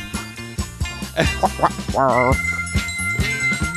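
A busy, swinging soundtrack with electric organ and bright struck notes from a xylophone or pitched triangle, ringing over a steady bass line, with a brief warbling, wavering tone partway through.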